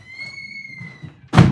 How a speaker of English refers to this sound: hang on, I'm going to close my door, hang on one second.